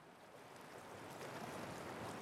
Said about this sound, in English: I put a boot to my ear, and I swear I could hear the ocean.